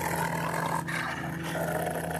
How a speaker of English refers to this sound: Right after the shadow passes, one of my dogs stares at the door and starts growling.